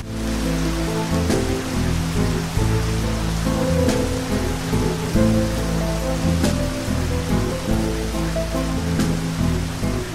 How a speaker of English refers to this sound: Thunderstorms.